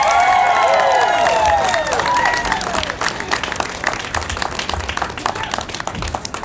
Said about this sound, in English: Now before we go any further, how about a big round of applause for these cool rocking cats right back here?